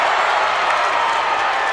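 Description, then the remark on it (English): A wrestling arena crowd at the King of Cable championship event cheers during a Sting versus Vader match in a loud, steady roar, a dense wash of many voices with no gaps and no single voice standing out, holding at the same level throughout. “This crowd here getting rabid.”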